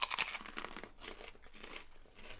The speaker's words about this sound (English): But now is the part where we get to eat some jalapenos. Can't go wrong with jalapenos. Oh, God. Are you ready to crunch in?